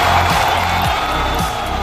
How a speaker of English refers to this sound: Ring the bell. Everybody, start to cheer.